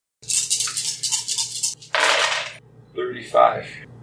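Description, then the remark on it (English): Dice clatter and rattle across a hard tabletop in a quick burst, rolled with advantage to hit during combat in a game, followed by a second rolling tumble and a brief murmur of voices at the end. “Go ahead and roll, thanks to your assassinate ability.”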